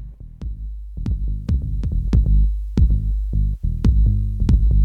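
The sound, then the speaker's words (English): A booming 808 drum machine beat with deep, sustained bass kicks and sharp snare and hi-hat hits in a steady groove, loud and without any voices. “I love my 808. Happy 808 day.”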